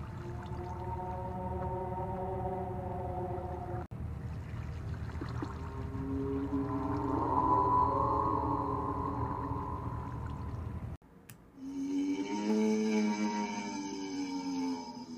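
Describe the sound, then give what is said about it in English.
An eerie Dementor creature sound effect from the Mo Creatures mod, of a creature stalking unseen: low, wavering moans and drawn-out tonal wails in three sustained stretches with brief breaks, steady and fairly loud, with no talking. “So basically, imagine yourself in a dark forest, and you could possibly be near a river, and there is a Dementor creeping up on you, or stalking you, but you don't know it's there until you hear these noises.”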